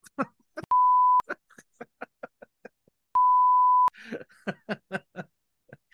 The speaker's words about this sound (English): I wish I got paid for every beep I had to put in the episode. Yeah, some of them it'd be a pretty lucrative episode.